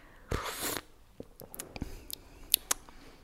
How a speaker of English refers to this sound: And actually, that's what you're supposed to do because you get the most air through the tea, and that's obviously what wakes up your taste buds. Will you demonstrate slurping for us? Yes, I will. So here we are, slurping the tea.